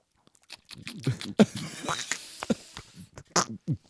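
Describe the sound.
Close-up mouth noises of someone sipping a drink: a string of wet clicks and short slurps, with a brief murmur of voice mixed in among the sips.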